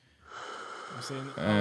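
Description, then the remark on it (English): Heavy breathing: a long, rasping breath of air that builds in loudness and ends in a low voiced groan, with no clear words. “And thankfully, it was just heavy breathing.”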